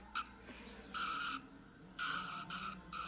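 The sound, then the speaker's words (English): Several sharp, high tire screeches from racing cars skidding in a big crash involving many cars, coming in short repeated bursts, with no clear impact and no voices. “Oh, big crash. Lots of cars wiped.”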